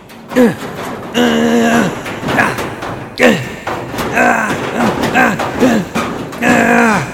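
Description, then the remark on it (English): Repeated heavy thumps bang against a metal school locker door from inside as someone tries to break out, irregular, mixed with strained grunts and groans of effort between the blows. “But first I have to bust out of this darn locker.”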